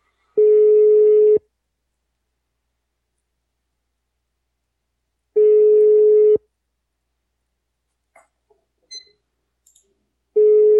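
A phone line rings out with a steady electronic ringback tone during a call to Molone Sandwich and Lunch Bar, one-second bursts spaced about four seconds apart, three times in all, with a few faint clicks in between.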